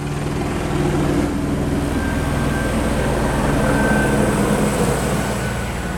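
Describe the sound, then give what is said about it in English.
A helicopter passes close overhead, its rotor thumping in a steady rapid rhythm over a loud, continuous engine drone, with no voices for the full six seconds. “It's a A-Star, actually, is what that was that flew by.”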